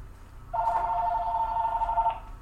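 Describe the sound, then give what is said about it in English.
A telephone rings with a steady electronic warble lasting about a second and a half, over a low background hum, with no talking. “Let me answer our phone.”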